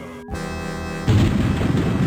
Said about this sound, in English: Lightning in the background.